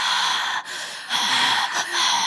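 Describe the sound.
A person imitates the heavy breathing of Michael Myers playing Shrek: loud, raspy, drawn-out breaths, about three in a row with short pauses between, no words spoken.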